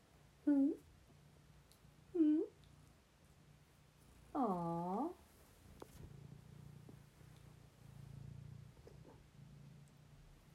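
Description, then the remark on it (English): Bambi, a domestic cat and the first cat the speaker adopted, meows three times, two short calls followed by a longer, wavering one, over a steady low purring rumble, with a person briefly reacting softly in between. “Speaking of the devil, Bambi, who was the first cat I adopted?”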